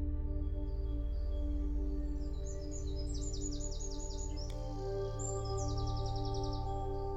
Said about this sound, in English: And then what? Perhaps the faint sound of birdsong.